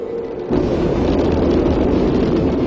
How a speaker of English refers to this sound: A mighty roar. Our rocket vibrates. White hot flame gushes downward. And the great beast lifts slowly from the earth.